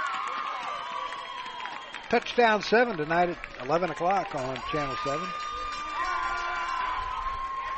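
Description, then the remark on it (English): A football stadium crowd cheers in a steady roar that runs the whole way through, while a man speaks clearly over it in the middle. “As Channel 7 is here, shooting the crowd. That's why you hear the noise in the background.”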